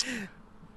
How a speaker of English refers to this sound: You yawn. You've very as poignant, very poignant statement on how boring we're boring we are.